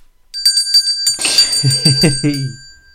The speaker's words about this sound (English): Oh, I think we're reaching for the bell. Here we go.